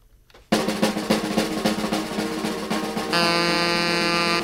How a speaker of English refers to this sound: Was that a foghorn? A what horn? A foghorn.